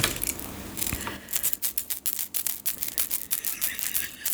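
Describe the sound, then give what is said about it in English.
A tiny maraca filled with rice, just unwrapped as a Christmas gift, shaken in quick, steady bursts, giving a soft, thin rattling hiss that repeats rhythmically, with no voices. “It's the world's smallest maraca. Where? I mean, it doesn't even marak.”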